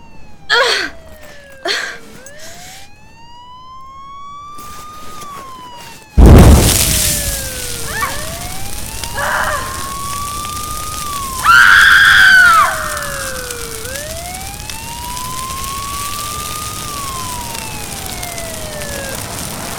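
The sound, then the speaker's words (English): An emergency vehicle siren of arriving paramedics and a rescue crew wails in slow rising and falling sweeps, while a sudden loud whooshing burst as a car catches fire breaks in partway through and leaves a rushing, crackling roar beneath it. “Just as the paramedics arrived, the car caught fire.”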